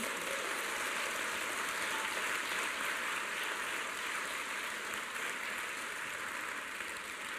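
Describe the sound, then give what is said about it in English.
A church audience claps for Jesus, a dense, even wash of hands beating together that holds at one loudness for several seconds with no voices over it. “Let us give a big clap for Jesus.”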